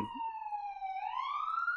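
An ambulance siren wails in the background, a steady high tone that dips slightly and then climbs again, heard on its own without anyone talking over it.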